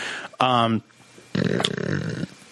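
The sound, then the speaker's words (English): A brief voiced vocal sound, then a longer loud, buzzy, sputtering mouth fart lasting nearly a second, with a flapping, fluttering texture. “Somebody mouth farted.”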